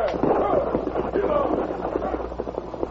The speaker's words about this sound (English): The masked outlaw fired at the lock on the heavy strong box.